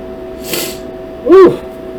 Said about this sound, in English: Sneezed. I sneezed away from the mic. I didn't send COVID your direction.